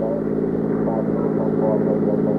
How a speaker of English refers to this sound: I got in and we drove to 73rd Street and 3rd Avenue.